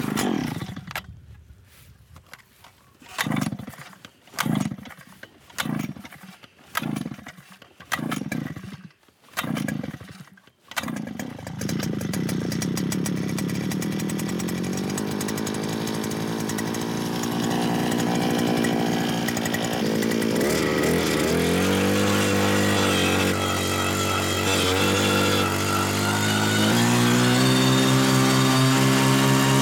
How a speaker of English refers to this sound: Okay, prime this bad boy. A little choke. And drill a hole.